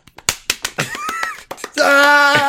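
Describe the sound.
A rapid series of sharp hand slaps, like quick high fives, crack out in an uneven rhythm, mixed with a brief voiced sound and then a sustained vocal cry.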